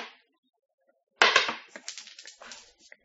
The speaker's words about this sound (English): can you please roll the dice for me now? 2. Ah, we've already done 2. Let's go again.